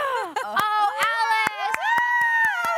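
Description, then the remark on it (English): Several women cheer and whoop together in sustained, excited cries, with sharp claps punctuating the noise, as a painting is revealed. “Every time you reveal pain, you're gonna like bring so the See Here Love women over because we're gonna cheer.”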